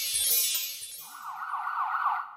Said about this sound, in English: All right. You're right. Sirens are on our end, everybody. Sirens are on our end.